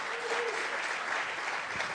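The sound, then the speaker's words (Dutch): Steady audience applause, a dense wash of many hands clapping at an even, sustained level throughout, with no voices standing out. “Let's give them all a hand.”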